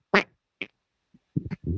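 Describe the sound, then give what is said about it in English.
A fart blasts into a microphone held up to the person's butt: a loud sputtering burst, a shorter puff, a faint blip, then a quick run of low, buzzy flapping pops with no talking. “That was a fresh one straight from my butt. Could you hear it?”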